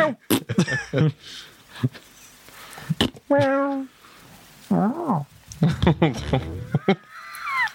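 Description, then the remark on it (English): A person imitates a cat, giving a few drawn-out, wavering meows with rising and falling pitch, mixed with sharp clicks and other short vocal noises. “That's human doing a cat noise.”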